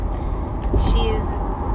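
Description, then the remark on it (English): Steady low road rumble and engine drone fill the inside of a moving car as the speaker drives, a continuous hum with a faint voice murmuring briefly underneath. “I'm driving in my car right now”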